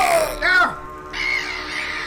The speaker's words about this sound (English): Not carcasses, my lord. Quite alive. They at once all let out a hideous screeching sound.